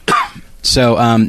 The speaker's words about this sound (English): So I'm still a little sick, so I'm going to probably cough from time to time during this episode. I'll try to do it off mic.